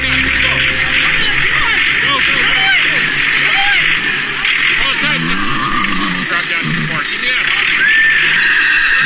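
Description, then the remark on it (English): Horses whinny and snort amid a busy outdoor commotion, with indistinct human voices and steady background noise running throughout, as emergency responders and farm workers in Montana rescue four horses that fell through the ice of a frozen pond into the water. “And so here's a short clip of the team bringing the horses to safety.”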